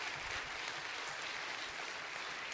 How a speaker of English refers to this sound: And Butch, go ahead and clap. That's good stuff.